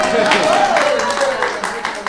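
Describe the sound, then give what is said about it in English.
An audience at a performance of the Infinite Wrench claps steadily in a dense, continuous wash of applause, with a few voices and cheers rising over it throughout. “Now you can clap.”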